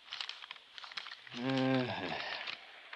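Soft rustling and crinkling of paper specification pages for a school building being handled and gone over page by page, with a brief hummed vocal sound in the middle, then more light rustling.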